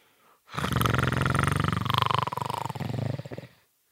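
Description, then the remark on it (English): A female character bares her teeth and growls: a single long, rough growl lasting about three seconds, loud and steady with a raspy, pulsing texture and a deep rumbling undertone, rising slightly in the middle before trailing off. “The centers of Penny's pupils glow an even brighter green as she bares her teeth and growls.”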